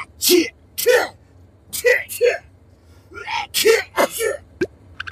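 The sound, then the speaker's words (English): A rapid string of loud sneezes, roughly seven sharp bursts with voiced, breathy onsets, coming in quick pairs over a few seconds with no talking in between. “Ooh, I want one too. Help me sneeze.”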